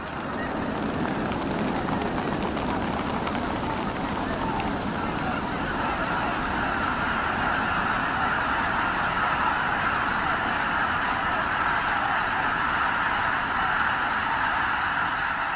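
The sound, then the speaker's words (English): A huge flock of geese and ducks lifts off together from a rice field, a dense, steady roar of honking calls and rushing wingbeats that fills the whole stretch without letting up. “Sometimes it is literally a wall of birds that you will see jump up out of a rice field when you pull up to it, with the sound of the wings sounding not all that different from a jet taking off from a runway.”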